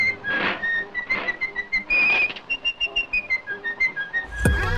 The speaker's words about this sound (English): Steamboat Willie premiered on this date in 1928, which was Mickey's big introduction, his debut. There he was, steering that boat, whistling this song.